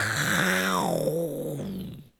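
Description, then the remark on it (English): A person lets out a loud, drawn-out roar imitating a lion, rough and throaty, sliding downward in pitch over about two seconds before cutting off. “If you eye Orion, roar like a lion.”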